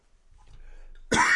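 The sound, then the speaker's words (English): A single sharp, loud cough bursts out after a second of faint, muffled background rustle. “I think my cough button's faulty.”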